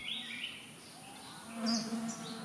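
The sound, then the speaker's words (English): A steady droning buzz of insects hangs in the dusty air of a village among trees on a hot summer day, swelling slightly midway, with faint high chirps of birds scattered in the background. “The air thickened with the buzz of insects and the dust of dry thatching.”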